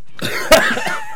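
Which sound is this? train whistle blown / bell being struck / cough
cough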